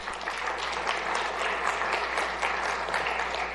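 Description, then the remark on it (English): A church audience applauds steadily after an announcement, a dense wash of many hands clapping at an even level for a few seconds with no voices above it. “I thought that would get thunderous applause.”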